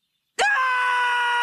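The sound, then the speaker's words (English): After a brief silence, Rigby from the animated series Regular Show lets out a loud, sudden scream that holds steady and sustained at a high pitch until the end, with no talking. “He starts to scream.”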